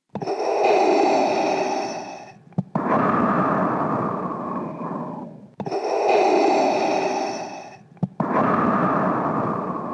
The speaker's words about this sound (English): Well, speaking of iconic sounds, yeah, next one, Darth Vader breathing.